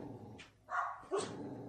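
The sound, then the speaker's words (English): Dogs in a house bark in two sharp, loud bursts at a dog walker going by, with a low rumbling growl running underneath between them. No one speaks. “Can you hear the growling going on right now?”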